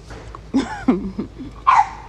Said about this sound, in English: If y'all hear barking in the background, it's my little puppy, Mozzie Maserati.